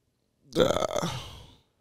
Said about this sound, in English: You can't just burp into the mic. That wasn't even a burp.